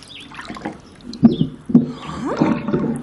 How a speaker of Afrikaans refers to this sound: Hoekom is die water oranje? Wag, laat ek die klere uithaal en die plop uittrek.